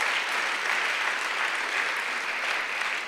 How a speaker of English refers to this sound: Let's give God an applause for those dudes.